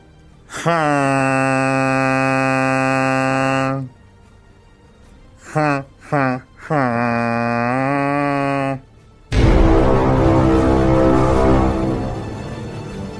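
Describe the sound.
A voice mimics a ship's horn with a long, steady low drone, a few short choppy bursts, then another sustained blast, followed by a stretch of rough, noisy sound.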